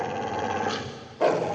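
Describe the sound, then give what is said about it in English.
A dog growls in a low, steady rumble that runs unbroken, then swells suddenly louder and harsher toward the end, with no talking. “There sat the dog with eyes as big as teacups staring at him.”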